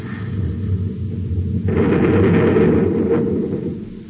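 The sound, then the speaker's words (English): Both atom cannons fire from a ship at an approaching ship: a heavy blast erupts over a steady low mechanical rumble, a loud roaring burst that holds for about two seconds before tapering off; no one speaks. “stand by to fire both atom cannons.”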